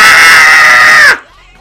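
A single loud, high-pitched scream held for about a second, then breaking off with a downward slide in pitch before silence.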